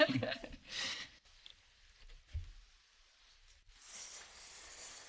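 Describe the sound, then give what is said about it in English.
Quiet sipping of fizzy sparkling water in a car: a couple of short wet slurps and mouth sounds, then a soft, steady hiss of bubbles near the end. “just sipping her bubbly water in the car.”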